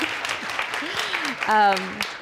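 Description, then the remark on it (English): An audience applauds an economist being introduced on a panel, in a dense, steady patter of many hands, while a few voices call out over the clapping, including one held cheer near the end. “Sure, yes, clap.”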